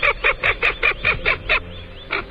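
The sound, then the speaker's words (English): Common goldeneye (Bucephala clangula) calling: a quick run of about eight harsh, nasal notes in steady rhythm, a short pause, then one more, clear with no voices. “Bucephala, Clangula, the common golden eye, is today's Talkin' Birds featured feathered friend”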